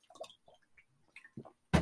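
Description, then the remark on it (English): Someone takes a quick sip of water: a few soft, wet slurping and swallowing clicks, then a sudden louder burst at the end, like a cup set down or an exhale. “Oh, I gotta take a drink of water for the masses there.”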